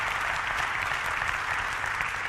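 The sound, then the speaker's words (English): A roomful of people claps steadily, a dense wash of applause sustained at an even level throughout with no voices standing out. “They didn't applaud at the 9 o'clock service.”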